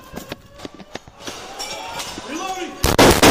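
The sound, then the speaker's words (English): Sharp gunshots from body camera footage as a woman is shot inside a building: several scattered cracks early on, then a couple of loud blasts at the end over muffled background noise and indistinct voices. “She shot right there.”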